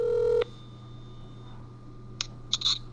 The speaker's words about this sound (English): It's ringing.